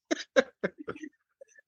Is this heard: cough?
yes